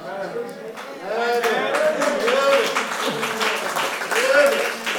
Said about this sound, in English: Yeah. Hey, that's all right. I'm glad you are clapping your hands. But we want to clap hands for you.